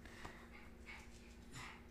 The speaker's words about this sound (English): I hate dogs that heavily breathe.